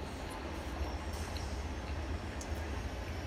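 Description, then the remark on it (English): A train rolls past on the railroad in Gold, California, its heavy, steady rumble continuous, with faint high metallic squeals flickering above the roar of the wheels. No one speaks. “Sounds of Gold, California. Train. Train. Bite a toast. More train. More train.”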